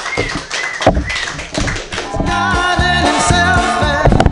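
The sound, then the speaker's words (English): An audience claps and cheers loudly for a stand-up comedian being introduced, then upbeat music with a thumping, steady beat kicks in and continues beneath the fading applause. “Clap your hands wildly”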